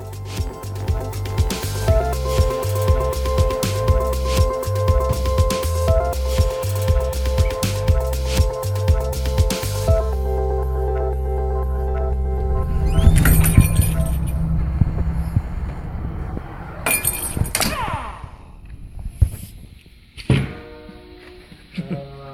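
Car repair shop ambience: a steady mechanical hum with rhythmic low thumping, then clanks, a couple of sharp hissing bursts and scattered metallic knocks, with faint voices in the background.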